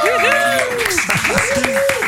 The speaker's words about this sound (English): I think it's time for some fresh applause. Come on, let me hear.